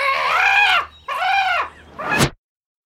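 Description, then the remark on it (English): A bird gives three loud, harsh screaming calls in quick succession, each a drawn-out squealing cry, the last one shorter and rising sharply before cutting off into silence. “I gotta get up there and scream.”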